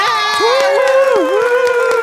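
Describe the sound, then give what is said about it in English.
An audience cheers loudly and continuously, with one drawn-out whooping voice rising above the dense crowd noise for the whole stretch. “This crowd is positively slap happy.”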